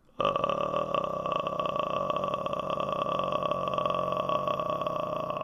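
A sustained, low, creaky vocal fry tone held steadily for about five seconds, a rough crackling rattle like a slow idling motor. A voice with no words makes it by releasing down to the very bottom of its range without straining.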